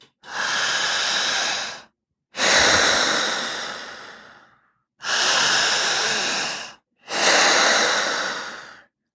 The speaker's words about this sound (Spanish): ¿Qué nombre te gustaría ponerle a esta respiración? Le pongo una respiración agitada. Agitada. Podríamos llamarla, si estuviésemos en China, respiración sacra. Si estuviésemos en el Tíbet, respiración pranayámica.